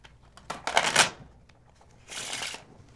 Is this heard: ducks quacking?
no